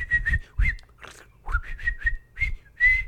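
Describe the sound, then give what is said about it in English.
Someone whistles an imitation of birds chirping back and forth in call and response, recorded one morning this past weekend: a string of short, high whistled phrases, some swooping upward, some steady, with breathy puffs between them. “I just couldn't sleep, and I woke up, and, well, I couldn't sleep because the damn birds were chirping.”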